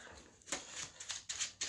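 Quiet papery riffling of a deck of playing cards being shuffled as a discard pile is reshuffled into a deck during a card game, a handful of quick, crisp bursts in a loose rhythm, with no voices.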